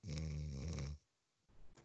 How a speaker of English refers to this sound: Are you fucking snoring